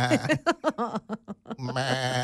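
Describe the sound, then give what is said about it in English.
A sheep bleats in a quick run of short, quavering bursts that stretch into one long, wavering baa, loud with nothing else in the background. “I guess that's more of a sheep.”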